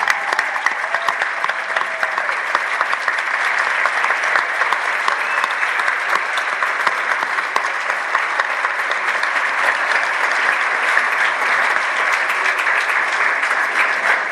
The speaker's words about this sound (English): and I'm going to ask y'all to not just give her a round of applause, but I want to see a standing ovation